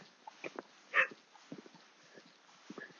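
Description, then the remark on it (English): A black Labrador dog whimpers, letting out one brief, high whine amid soft, scattered snuffling and low grunting sounds, with no one talking. “Dog's more interested now. Two black labs.”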